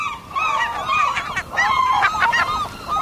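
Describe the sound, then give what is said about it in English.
A flock of gulls calls continuously, with harsh, nasal cries overlapping one another at moderate loudness, with no voices present. “Gulls are a year-round fixture of coastal waters and many locales in the interior of the continent.”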